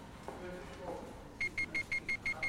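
A ticket barrier beeps rapidly and insistently as it refuses to open for an old person's travel card, about seven short high-pitched tones in a steady rhythm, following a brief stretch of background murmur.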